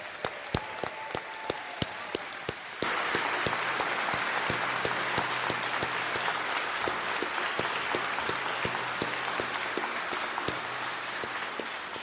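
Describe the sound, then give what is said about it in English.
Audience applause for a choir: a few scattered claps at first, then a sudden swell into dense, steady clapping from a large crowd that holds at full strength for about nine seconds, with no talking. “And yesterday, let's give a warm round of applause.”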